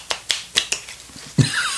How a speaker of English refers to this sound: Okay, I'm going to give this a shuffle. And, Jesus, shuffle behind my back. Whoa!